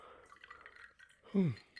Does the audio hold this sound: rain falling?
no